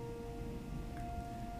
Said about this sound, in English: Those are the sounds of Milwaukee. Don't know what that siren was. Really scared me. I don't know if you could even hear that.